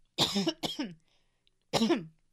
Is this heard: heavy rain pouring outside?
no